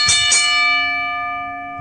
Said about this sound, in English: DPP, ring the bell.